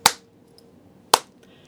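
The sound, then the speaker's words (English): Two sharp, loud hand claps about a second apart, crisp with a quick decay, standing alone without any voices. “He started to clap. And then people in the room started to clap too.”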